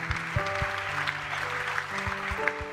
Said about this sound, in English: Give him a hand clap of praise today.